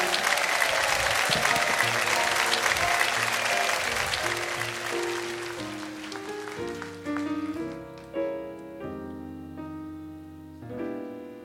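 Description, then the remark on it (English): A crowd applauds to welcome Lieutenant Governor Lorraine Hunt-Bono at a holiday show, with steady, dense clapping that gradually fades as a band's sustained instrumental chords rise and take over in the second half. “A warm welcome, if you would, my lovely wife, Lieutenant Governor Lorraine Hunt-Bono.”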